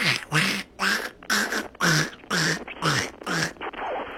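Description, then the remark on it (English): A voice imitates Donald Duck choking on a piece of apple, letting out about eight rapid, raspy quacking bursts in a steady rhythm, loud, with short gaps between each sputter. “And now again, my impression of Donald Duck choking on a piece of apple.”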